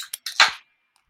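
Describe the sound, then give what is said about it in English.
A can of No Trespassing, an IPA from Vanished Valley, cracks open: a couple of quick metallic clicks, then a loud, bright burst of fizzing hiss that fades within about half a second. No one speaks. “First up, No Trespassing. 3, 2, 1, crack.”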